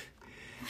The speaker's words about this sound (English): Whoops. Sorry for that loud bang. I do apologize for that. Really crappy tripod. I'm not gonna use that anymore.